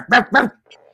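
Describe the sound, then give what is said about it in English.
A person imitates a dog with two loud barks in quick succession, followed by a faint, low growling rumble that trails off. “Oh fuck, ghost dog. Not again. Ghost dog.”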